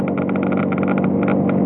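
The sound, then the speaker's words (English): A cold car engine idles steadily, with a fast, regular ticking or clicking running over the low rumble throughout. “All right, now let's switch to a cold engine operation.”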